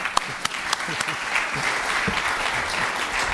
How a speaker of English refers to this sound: now you can clap